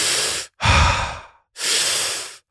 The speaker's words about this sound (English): Warrior breathing is just a quick inhale and exhale through the mouth.